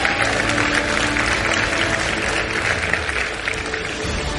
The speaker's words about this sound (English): You can clap for that, because let's go.